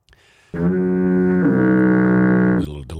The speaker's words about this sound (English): That was a foghorn for the word appropriate yes.